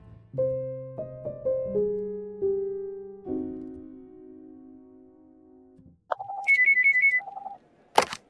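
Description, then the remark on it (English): A slow, descending run of sustained musical tones fades out, then a short electronic office telephone ring warbles for about a second, followed by a sharp click. “Why are you answering my phone?”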